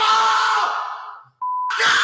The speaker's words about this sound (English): Holy shit. My 7-year-old screams like that.